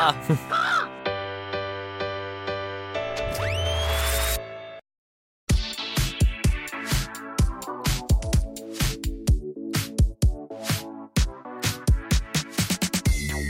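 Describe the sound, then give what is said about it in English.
Voices imitate a flock of crows, letting out rapid, overlapping caws, fairly loud. They follow a sustained droning tone and a brief silence. “They just released 1,000 doves.”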